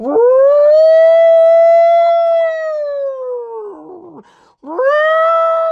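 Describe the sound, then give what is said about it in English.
A human voice imitates a wailing 'douchebag alarm': a long, loud sustained tone that rises slightly, holds, then drops, followed after a brief break by a second rising wail. “We sound off on them right here on Spazzing Out, and let's sound the alarm, the douchebag alarm, because we don't have sound effects. I'll do it for you.”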